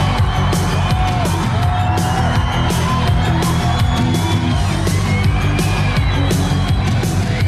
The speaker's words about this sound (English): Including the delay, I count nine mores in ….